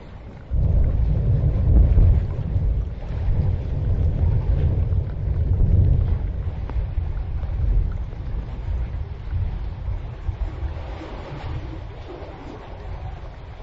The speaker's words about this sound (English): As you can hear, the rain's dripping all about me.